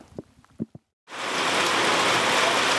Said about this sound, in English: On the way back from the bridge, it just started absolutely belting down with rain.